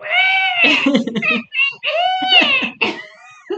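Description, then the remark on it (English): David Schwimmer imitates a velociraptor with two long, high-pitched, wavering screeches, each breaking into raspy, throaty chatter, followed by a short final squawk. Loud, with no ordinary speech. “Oh, David Schwimmer being David Schwimmer was a brilliant impression of a velociraptor.”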